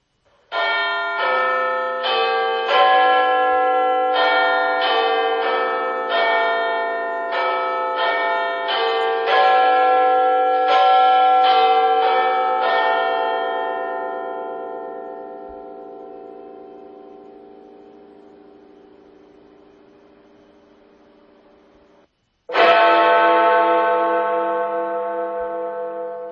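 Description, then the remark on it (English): Westminster quarter chimes of Big Ben played by an Alexa smart speaker at 1:12 p.m.: all four quarters ring out as a full sequence of bell notes, fading into a long resonant decay, followed by a single deep, loud bell strike that hums away slowly. No talking. “Okay, 1:12, so it's in the first quarter of the hour, so we should have all four chimes, all four quarters of the tune at the beginning, and then one bong.”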